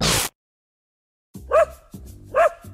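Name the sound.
dog barking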